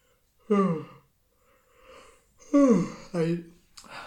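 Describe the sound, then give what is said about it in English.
Voiced yawning: a drawn-out groan that slides downward in pitch, then after a pause a longer yawn followed by a shorter one, with breathy air at the end. “I definitely yawned too many times in this audio, but I can't be fucked editing them all out, so I'm just going to leave them in.”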